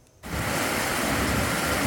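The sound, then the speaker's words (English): A loud, steady roar of floodwater rushing and carving out new channels in Cache Creek, British Columbia, starts abruptly after a brief silence and continues without a break, forceful like a swollen river surging through a channel. “Water continues to carve out new channels as excavators work to unclog choke points.”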